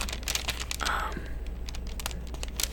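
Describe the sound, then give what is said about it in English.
A quiet rustle and crinkle of paper, with a few soft brushing bursts and a brief swish as a page is turned during a reading, over a low steady hum and no talking. “I am turning the page.”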